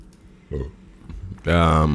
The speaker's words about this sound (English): Just burp right onto that mic. Burp.